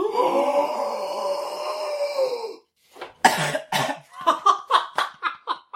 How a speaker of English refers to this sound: For everyone at home, he gasped too hard. Yeah. He overgasped, you might say.